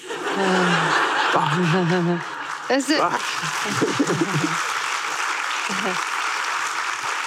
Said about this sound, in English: sorry, I interrupted somebody clapping.